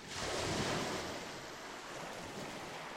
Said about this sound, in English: Ocean waves are surface waves that occur on the free surface of bodies of water.